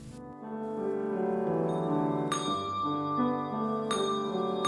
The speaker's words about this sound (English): The bells of St. Michael of All Angels Episcopal Church in Fort Bragg opened the Living Word Christmas video.